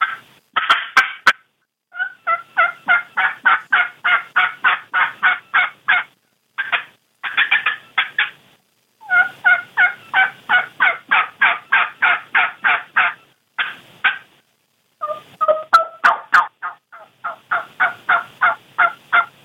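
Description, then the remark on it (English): Rapid series of raspy turkey hen yelps made on a handheld game call, coming in quick rhythmic runs with brief pauses between sequences, fairly loud with no talking. “Bit of practice, you can learn to sound like a couple different hens.”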